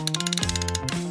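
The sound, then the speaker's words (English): A wrench ratchets in a quick, steady run of sharp clicks, fairly loud, layered over a pitched tone that steps down and back up like a cartoon sound effect. No one speaks. “Wrench.”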